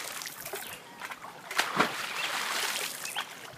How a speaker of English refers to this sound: My first and only thought was head straight to the backyard and find some cold water. In the backyard, I find a huge bucket of water and I jump in and start splashing around.